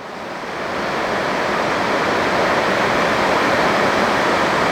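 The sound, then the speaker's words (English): Heavy rain pours down in a steady, dense hiss with no breaks, fading in over the first second and then holding a constant, loud wash of noise. No voices are heard. “It's like the rain you're hearing.”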